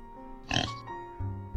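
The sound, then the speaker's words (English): A pig lets out a short, nasal oink, followed by a couple of lower, softer grunting tones, with no talking. “He could see the watering in the pigs' eyes as they let out a big grin and a nice oink.”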